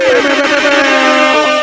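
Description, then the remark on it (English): A loud, blaring DJ air horn sound effect sounds in a rapid, sustained burst of stacked brassy tones, harsh, with no talking over it. “I have never heard the DJ air horn and frowned at the same time.”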